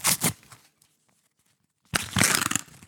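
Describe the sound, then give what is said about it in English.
A paper parking charge notice letter crinkles and rustles as it is opened, a short burst of crackling, then a pause of near silence before a longer, louder stretch of crumpling and tearing. “Gotta love that crinkle.”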